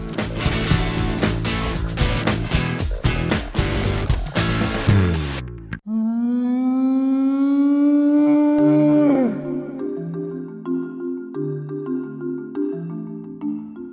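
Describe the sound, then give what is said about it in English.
A few seconds of dense, loud music cut off, then a long, whale-like howling call swells and holds loudly before dropping into lower, wavering moans. No one speaks. “Well, the Brontosaurus whale tells us once again that our time is up.”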